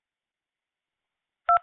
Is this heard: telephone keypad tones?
yes